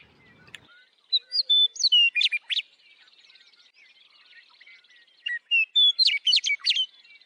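Wild birds chirp and twitter in two lively bursts, bright whistled notes and quick trills rising over a soft, steady background chorus of distant calls, with no voices present.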